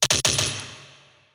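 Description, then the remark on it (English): A rapid burst of four pistol gunshots, sharp, loud cracks packed into a fraction of a second, followed by a long ringing decay that slowly fades out. No voices. “His advice went unheeded as the first of four rounds slammed into his chest.”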